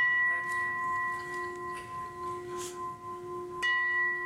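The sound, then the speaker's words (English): A gong rings with a steady, sustained metallic tone that hums on, then is struck again near the end, sending out a fresh shimmering wash. No one speaks. “Three gongs?”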